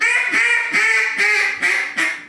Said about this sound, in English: Blow the call that way. I want to hear your fine hen mallard.